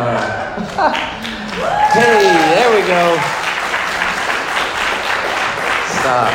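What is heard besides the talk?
audience applause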